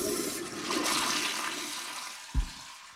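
A toilet flushes with a broad rushing, gurgling swirl of water that fades over a few seconds, ending with a short low thump; toilet paper listing exes is being flushed.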